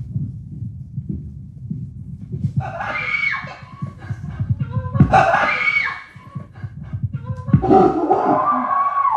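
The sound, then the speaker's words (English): A woman lets out several loud, high-pitched screams of fright in bursts as someone behind her office door scares her on her return from lunch, over a steady low thumping rhythm in the background, with a final scream trailing into a pained cry. “So if you couldn't tell at the end of that, I'm saying ow, because it hurt so bad from screaming, and I was just terrified.”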